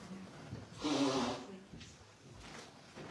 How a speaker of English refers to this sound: To avoid sniffling the whole time, I'm just going to grab a tissue here.